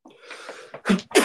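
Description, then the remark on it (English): A quick sniffly intake followed by two sharp, loud sneezes in close succession, bursting out with broad breathy force. “Bless you.”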